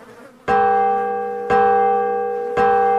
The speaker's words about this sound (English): Do you hear that? It's the Liberty Bell. That must mean that all of the delegates have all reached an agreement.